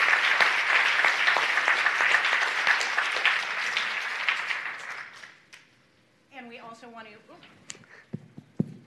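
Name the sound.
round of applause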